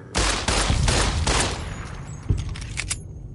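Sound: video game gunshots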